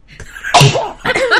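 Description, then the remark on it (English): A sharp, loud sneeze bursts out, its explosive hiss broad and bright, followed by a short voiced tail and a second brief vocal burst right after. “Bless you.”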